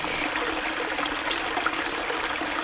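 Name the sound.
flowing stream water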